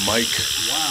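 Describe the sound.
A phone ringtone in a studio that mimics a rattlesnake's rattle, a steady dry buzzing hiss running the whole second while a man speaks over it.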